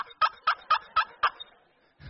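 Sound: tom turkey gobbling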